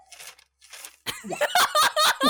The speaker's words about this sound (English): The sound of the page turning. Paper shifting.